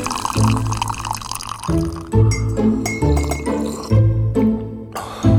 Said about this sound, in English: Jonah's mother brought hot Maghrebi mint tea, pouring it into the cups from high up in the air